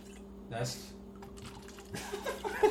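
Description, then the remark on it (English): Kraken rum poured over an ice cube into a cup: a brief splash and clink early on, then a longer, louder trickling pour with rattling ice, over a steady low hum. “So, I pour Kraken in.”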